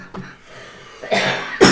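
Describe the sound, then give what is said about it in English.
A few harsh coughs from two people break out in quick succession, one of them choking on snacks, the last cough loudest and sharpest, with short breathy gaps between them and no talking. “Sorry, we're both coughing.”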